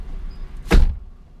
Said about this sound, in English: See you, sweetheart. Oh, slam that door.